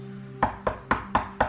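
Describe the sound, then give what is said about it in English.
Five sharp knocks on a door in a quick, steady rhythm, each a solid mid-pitched rap of even loudness, with no voices present. “A shadow appeared at the door and knocked.”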